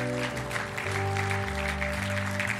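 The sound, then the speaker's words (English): A church audience claps steadily in a dense, sustained wash of applause as a clap offering to the Lord, with sustained keyboard or organ chords playing underneath throughout. “Come on, give the Lord a great clap offering, amen.”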